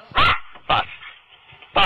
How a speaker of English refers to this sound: That dog just bit him in the face.